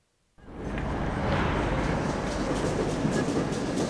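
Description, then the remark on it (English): After a brief silence, a train's loud, steady rumble sets in, a broad roar of wheels and carriages with faint rhythmic clatter running underneath, no voices; Guy Paget's train arriving in the afternoon. “The next afternoon, I met Guy Paget's train.”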